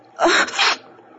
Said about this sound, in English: Oh, oh, good heavens, what brought that on? Here, blow your nose.